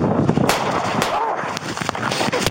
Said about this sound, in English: Shots fired! Shots fired! Officers returned gunfire,